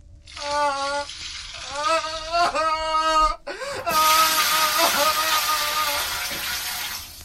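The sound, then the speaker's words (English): Water pours from a bucket onto a person in a loud, sustained rush and splash lasting several seconds, after and beneath strained vocal cries. “They pour the bucket's contents on me.”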